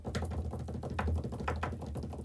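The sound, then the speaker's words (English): Quick tapping like fingers drumming on a tabletop, a short improvised drum roll with irregular hits, fairly quiet, with no talking over it. “Drum roll, please.”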